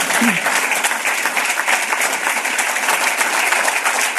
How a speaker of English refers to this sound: And yeah, you can clap for them.